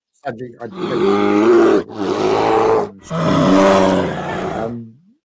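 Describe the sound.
A person's voice imitates a bear cub's roar and snarl: three loud, raspy bursts, each drawn out for a second or more with short breaths between them.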